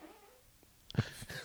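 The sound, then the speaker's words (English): A short, squeaky fart breaks out partway through, a brief rasping burst with a high, whiny edge and a quick low sputter, louder than the faint background hum around it. “Perfectly timed fart there.”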